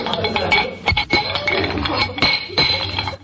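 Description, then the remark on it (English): A wrench tightens loose metal feeder pipes, with a busy run of metallic clinks, scrapes and rattles over a few seconds, broken by a couple of brief pauses and no voices. “Oh, here's a wrench. We'll tighten them up.”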